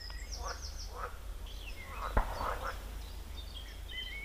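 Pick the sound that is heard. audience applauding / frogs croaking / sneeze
frogs croaking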